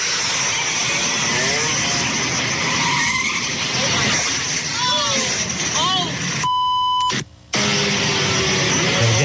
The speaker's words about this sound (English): This is what it sounded like. And you hear the screech and then you hear the crash.